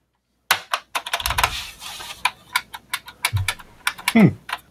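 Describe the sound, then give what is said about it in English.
Rapid, uneven typing on a Model F reproduction keyboard: loud, sharp clacks in quick bursts with short pauses, and a brief low vocal murmur near the end. “I splurged and got the Model F reproduction. Now that is a keyboard.”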